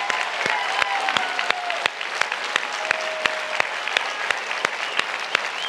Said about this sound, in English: So if you're here and you are active duty or you've served or you're a vet, I want you to stand up real quick because I feel like you deserve an applause.